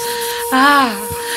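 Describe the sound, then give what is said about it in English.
A hair dryer runs with a steady airy whoosh and a constant high motor whine, broken midway by a brief louder tonal swell that slides downward before the even hiss continues. “Okay, we don't have a heat lamp, but I was able to find a hair dryer.”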